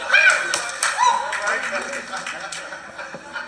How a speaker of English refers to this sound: See, y'all have been sold a lie. Listen to the people applauding this.